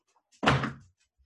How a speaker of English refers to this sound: Can you shut the door? Thanks. My dogs just came in. And mom opened the door and let him in.